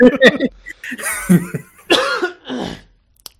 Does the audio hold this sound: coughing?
yes